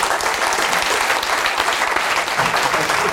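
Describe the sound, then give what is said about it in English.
A crowd applauds politician Luciana Berger as the last round of applause of an evening event, dense overlapping claps forming a loud, even wash of sound that holds constant for a few seconds with no voices over it. “And please, your last round of applause for the evening for the wonderful Luciana Berger.”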